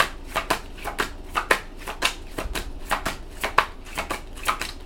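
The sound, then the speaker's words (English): Tarot cards being shuffled by hand, a quick run of crisp riffling snaps repeating steadily about twice a second, clear with no talking. “Wow, this came out during the pre-shuffle.”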